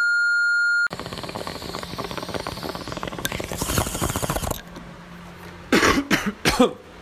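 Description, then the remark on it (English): A short electronic beep, then a long rough rushing, crackling noise of a bong hit, followed by three harsh coughs in quick succession with no talking. “Sorry. Ow. Sorry. Bong hit.”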